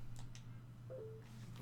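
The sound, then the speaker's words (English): A faint, short electronic tone chimes once from a phone, riding over a steady low hum with a couple of soft clicks before it; no one speaks. “Turn your phone off”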